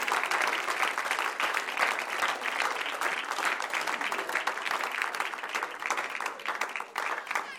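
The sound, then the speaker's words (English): A church audience claps their hands together for the Lord in sustained, dense applause, many overlapping claps at an even, steady loudness from start to finish. “Why don't we give the Lord a hand clap as he comes?”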